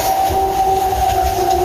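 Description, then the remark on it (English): A purported Bigfoot scream: one long, steady, piercing wail that holds the same high pitch throughout, sounding over a constant low rumbling noise, with no talking. “Yeah, somebody said, this is a recording they captured of Bigfoot screaming.”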